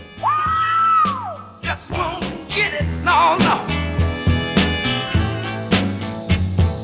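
A soul singer lets out a long, high, raspy scream that swoops up and falls away over a full band, followed by energetic horns, drums and guitar continuing the song.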